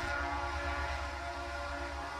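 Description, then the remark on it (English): A train rolls through the town of East Palestine, Ohio, on a cold, blustery day (February 3, 2023), with a steady low rumble and a sustained, droning horn-like tone, holding at an even loudness throughout, with no voices. “And the trains rolled through town, one after another, as they do every day.”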